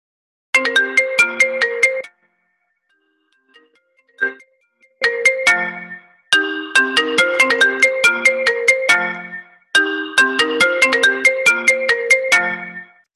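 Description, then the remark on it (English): A FaceTime video-call ringtone on a phone plays a bright, bell-like melodic phrase, repeating in clear bursts with brief pauses between them, loud with no talking. “Let me FaceTime you from my phone.”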